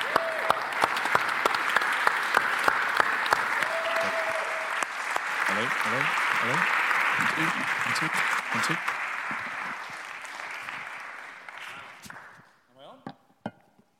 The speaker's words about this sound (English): I think it'd be appropriate to give him another big Coastline round of applause.